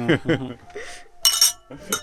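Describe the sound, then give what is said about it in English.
Wine glasses clink together in a toast, a bright, ringing chime that follows a few short voices and fades quickly, fairly loud. “Cheers to that. Cheers. Cheers.”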